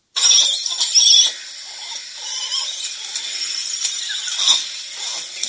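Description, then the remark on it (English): Langur monkeys squeak and squeal in a shrill, overlapping chorus, with a loud burst in the first second before settling into a steady, busy stream of high-pitched calls. “And so here is what I would call more some of their squeaks and squeals.”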